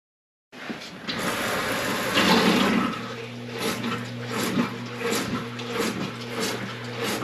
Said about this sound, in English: And basically when that float rises with the water inside this well, it's going to trigger the sump pump to come on.